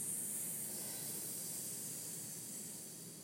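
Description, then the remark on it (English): A group of people lifting themselves up on their palms in an exercise make a long, steady snake-like hiss together, breathy and sustained for a few seconds before gently fading, with no words spoken. “And let's all be a little snake and go.”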